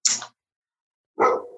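animal, dog barking

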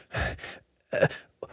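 human body sound, heavy breathing

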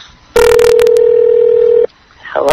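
signal or alarm, telephone keypad dialing tones

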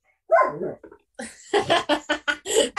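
animal, dog barking

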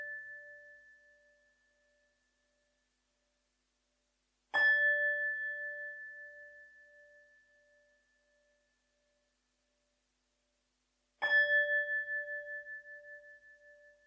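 signal or alarm, meditation bell ringing

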